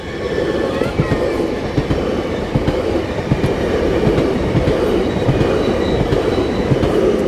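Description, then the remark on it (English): A train rumbles steadily along the rails, a dense low roar with faint rhythmic clatter and a thin high whine from the wheels, loud throughout. “There's the train.”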